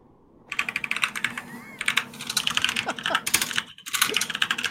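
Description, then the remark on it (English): Rapid, forceful typing on a computer keyboard, dense sharp clacks in quick bursts with a brief pause, fairly loud, with faint background murmur. “Man, the aggressive keys.”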